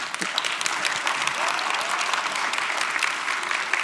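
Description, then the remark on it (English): An audience applauds steadily for a few seconds, a dense, even wash of clapping hands at a constant loudness, with no one speaking over it. “This is a lively crowd.”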